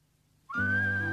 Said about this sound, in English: Oh, it's called whistling, whistling. Whistle.